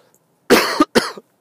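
Two quick, harsh, loud coughs in close succession from a person in the last days of a cold, followed by silence with a faint click at the end.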